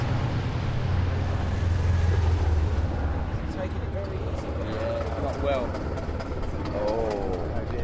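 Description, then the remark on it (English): A racing car with a damaged drive shaft rumbles and grinds steadily, a heavy low mechanical drone with uneven rattling as the pitch wavers, while people talk over it. “That sounds poorly, doesn't it? It's not engine, is it? That's drive shaft.”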